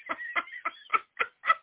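Two pet birds chattering: a quick, steady run of about six short, raspy chirps and squawks, moderately loud with no voices over them.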